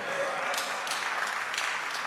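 An audience of mostly children claps steadily, a dense patter of hands with a few sharper claps standing out, moderately loud and continuous without any talking.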